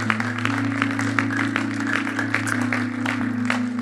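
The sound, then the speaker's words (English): An audience applauds with a steady patter of many overlapping hand claps, sustained for several seconds over a constant low electrical hum, with no one speaking. “Let's give her another clap, shall we?”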